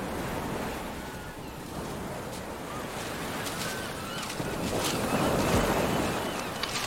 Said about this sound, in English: Down by the water's edge, where the breakers tumble along the sand.